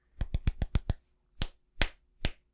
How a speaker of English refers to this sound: Slapped in the face with a boiled hot dog.